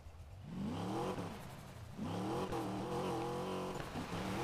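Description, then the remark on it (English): A video game car engine revs up in two rising surges, its harmonic whine climbing in pitch, dipping briefly around the midpoint, then building again, loud with no talking. “The issue is that it's hard for me to, like, control the car whenever I'm not going, like, at really, really high speeds, like, over 100 miles.”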